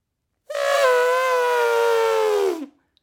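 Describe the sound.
A person imitates an elephant trumpeting: one loud, brassy, two-second blare that holds a steady high pitch, then sags and trails off at the end, with no talking.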